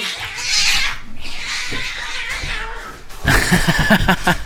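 A cat yowls and snarls amid rough scuffling noise as it attacks a man, sinking its claws in, the cries growing louder and more frantic toward the end.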